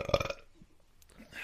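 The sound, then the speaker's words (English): A single loud, raspy burp erupts right at the start and lasts about a third of a second, followed by near quiet with only faint rustling. “I'm sorry. I've had gas this whole fucking time.”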